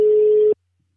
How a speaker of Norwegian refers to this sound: Nu prøver jeg at ringe op. Spændende, om hun tager den. Det er jo lidt sent. Jeg vil ringe.